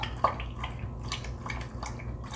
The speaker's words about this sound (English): This is my parents and by proxy my dog Hops. He's a Shetland sheepdog, and one of my absolute favorite sounds is him drinking water out of his water bowl. When he does, he has a particular pattern, like a waltz.